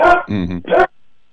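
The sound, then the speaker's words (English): A female Australian Shepherd named Lula gives a quick run of three loud barks, the middle one drawn out and whiny, followed by silence. “That's my Australian Shepherd girl.”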